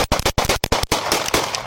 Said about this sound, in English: He is blinded by flashlights. He raises the gun, and cops open fire.